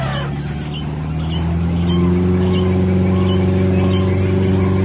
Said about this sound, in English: Number three is from Adventureland at Disneyland, and it is the sound of the boats on the Jungle Cruise. That motor sound.